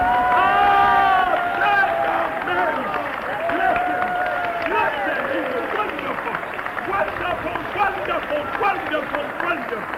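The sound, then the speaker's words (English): An audience claps for Jesus steadily for about ten seconds, a dense patter of many hands, while raised voices cheer and call out over the applause, loudest at the start. “Oh, give him a clap.”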